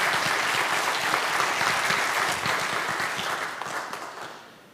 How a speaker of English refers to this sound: Y'all give them another round of applause.